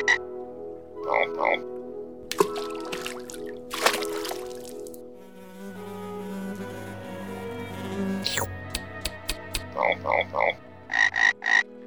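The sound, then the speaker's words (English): Frog croaks sound in short, rhythmic bursts, a few near the start and a quicker run at the end, with a sustained tonal passage in between. “Elijah stuttered his name, which made the frog laugh, which made Elijah smile, and they became friends.”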